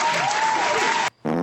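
A loud burst of crowd applause sound effect, dense and steady, cuts off abruptly after about a second, and a voice begins speaking right after.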